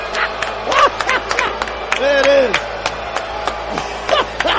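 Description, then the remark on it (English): A large arena crowd at a New York Knicks game against the Pelicans boos Knicks player Julius Randle, a dense roar of many voices with drawn-out jeering tones swelling and falling, plus scattered shouts and claps throughout. “The New York Knicks savior from a year ago booed relentlessly.”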